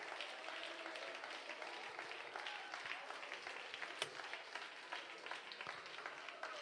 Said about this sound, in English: Clap your hands to the Lord one more time and let's give him praise.